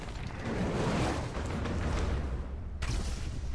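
Loud cinematic impact sound effects from a trailer, of Superman and the Flash punching each other, with heavy low rumble and rushing whooshes, building continuously before a sharp, punchy hit at the end; no voices.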